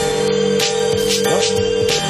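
phone ringing

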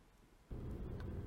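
car driving

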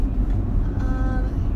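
car driving on road

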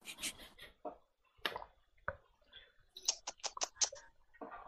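mechanical keyboard typing clicks

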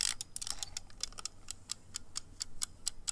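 timer ticking

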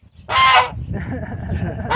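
goose honking

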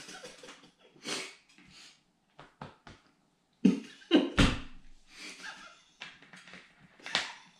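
coughing

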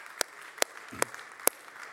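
audience round of applause

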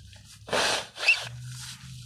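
nose blowing

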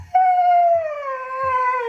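dog howling

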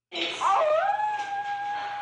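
wolf howl

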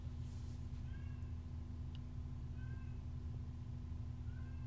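cat meowing

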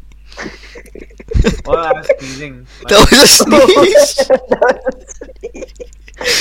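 sneeze

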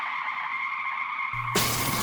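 car skidding and crashing

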